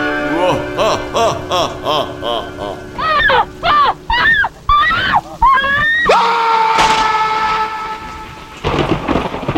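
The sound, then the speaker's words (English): A woman's high, wailing screams from the horror film The Werewolf of Washington rise and fall repeatedly, followed by a man's scream, then rumbling thunder and heavy rain take over, with a sustained whistle-like tone in the storm. “That woman screaming at the right before the guy screams in that is from the horror classic The Werewolf of Washington.”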